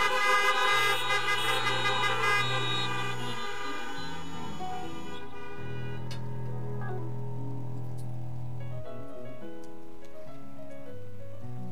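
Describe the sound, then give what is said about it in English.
A chorus of car horns honked by a church audience, answering a call to honk and say amen, sounds together for several seconds, long overlapping blasts at different pitches blending into a steady din with no voices. “If you agree with that and you believe it, so nobody gets overlooked, honk your horn and say amen.”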